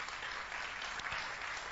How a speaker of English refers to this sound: And the brother who has lifted his hand, please come to me. Come. Clap for him as he comes.